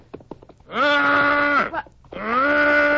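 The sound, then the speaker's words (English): A man's voice imitates a lost calf's call with two long, loud, wavering moans, the first rising then steady, the second steady and sustained, after a few short breathy sounds. “It was just a kind of a call of a lost calf.”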